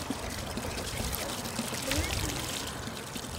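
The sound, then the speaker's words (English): Spring water pours steadily from a single pipe coming out of the mountain beside Route 119 in West Virginia, a continuous splashing rush that holds even for a few seconds, with a faint indistinct voice in the background. “The spring is a single pipe coming out of the mountain.”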